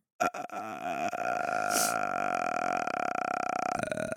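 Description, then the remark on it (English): A single voice demonstrates vocal fry, holding a low, creaky vocal fry for about four seconds, a steady rattling croak with a buzzy, gravelly texture and no words. “Vocal fry, but to sing and no, like, but I'll demonstrate what I understand is vocal fry.”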